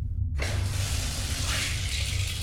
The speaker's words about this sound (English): A water leak has sprung through one of the submarine walls, and ocean water sprays in from a crack in the metal.